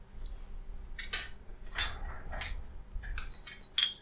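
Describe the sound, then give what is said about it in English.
Several glasses clink together in a toast, a scatter of sharp taps followed by a cluster of bright, ringing chimes near the end, moderately loud with no voices. “Cheers, boys.”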